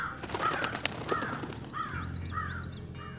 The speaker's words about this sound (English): I knew sending out scout crows would come in handy.